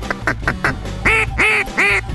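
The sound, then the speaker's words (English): A duck call blown to imitate a mallard hen, as used when calling mallards: four quick short quacks followed by three louder, longer, raspy quacks in a steady descending cadence, clear with no talking. “If you're blowing at mallards, you gotta make a mallard sound. This is a mallard hen.”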